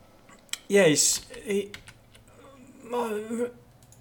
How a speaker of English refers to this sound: I've got typing going berserk. You might need to go and push to talk. I'm not sure who it is. I'll try to. It's weird that you can hear that so well. Okay. Or just move the microphone away from the keyboard.